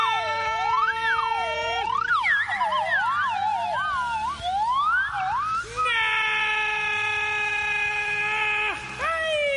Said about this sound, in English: You guys blow so well. Oh, man, do we blow. I got to tell you, there's something here. I said the slide whistle with a little echo. Uh-huh. A little slap echo, as they say,